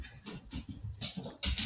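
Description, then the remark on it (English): A person imitates a dog, giving a quick run of five or six short, breathy barks in a steady rhythm, fairly quiet, with no other talking. “That was me barking.”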